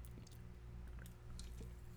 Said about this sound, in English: So I'm going to give you 2 seconds here. I'm going to have a little sip.